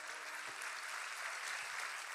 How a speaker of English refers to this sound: Come on, let's clap. It's good to be in God's house.